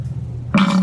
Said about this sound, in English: I will try to do a screenshot or a short little video clip, maybe an animated GIF, of the bloody pussy fart. Let's hear that again.